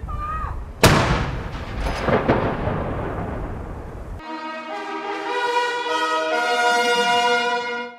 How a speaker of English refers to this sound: The silence only broken by royal salutes and gunfire, one a minute, from the city's iconic castle.